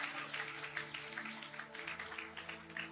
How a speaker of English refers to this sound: If you're going to clap, come on, give God a good hand clap.